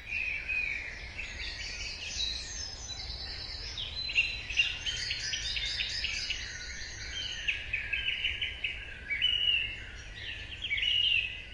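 A dense dawn chorus of many birds singing at once outdoors, overlapping trills and chirps filling the air continuously, with no voices present.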